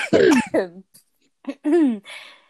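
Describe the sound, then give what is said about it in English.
A short fit of loud coughing by someone whose throat has gone tight, clearing it before singing: several rough, voiced coughs and throat-clearing bursts come in two clusters with a brief pause between them. “Give me 2 seconds to have a small coughing fit so that I can sing for the next part.”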